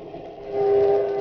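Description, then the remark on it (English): An express train bound for New York rolls along the rails with a steady rumbling roar; midway through, a sustained whining tone rises over the noise and holds to the end. No voices. “I hiked straight for the railroad station and caught the first express for New York.”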